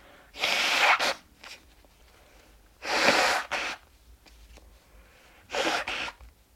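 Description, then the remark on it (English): Someone blows their nose three times, each a forceful, noisy honking burst about a second long with short pauses between. Fairly loud, with no talking. “I'm going to blow my nose again because, obviously.”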